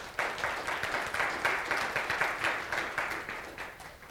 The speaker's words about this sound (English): See? And, yeah, clap.